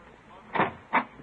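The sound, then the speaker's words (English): A door being opened: two short, muffled mechanical bursts close together, like a latch turning and the door swinging, over a faint background hiss with no talking. “can you open the door?”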